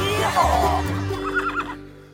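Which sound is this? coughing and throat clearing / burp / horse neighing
horse neighing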